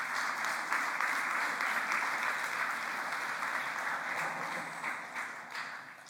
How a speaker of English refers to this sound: If you'd give her a little round of applause.